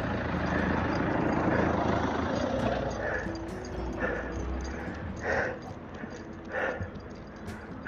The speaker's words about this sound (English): Ooh, here comes a car.